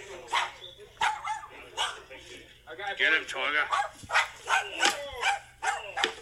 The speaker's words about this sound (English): Listen to the dog barking.